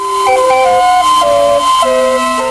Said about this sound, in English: called the Tangley Automatic Air Calliope, or simply the Calliophone, which was a variation of the then common steam organ, a musical instrument that produces sound by sending steam through large whistles, typically a very large musical instrument.